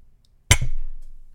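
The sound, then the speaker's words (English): Two mugs clink together in a toast, a Dunder Mifflin Paper Company mug holding Strike Force and a General Mattis mug holding White Claw and Strike Force: a loud, sharp knock followed almost at once by a second hit, then a short ringing fade into silence. “Cheers, buddy.”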